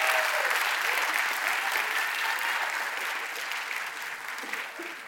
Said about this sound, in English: Now, can we all give my mom a big round of applause as she comes? And yeah, come on, Mom.